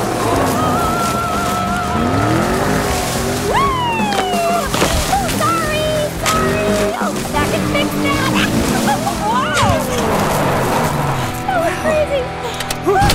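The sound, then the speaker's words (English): A vehicle careens around wildly: a loud, continuous roar with rising and falling squeals and sloshing rumbles, while voices yelp and shout over the chaotic ride throughout. “When did you learn to drive like that”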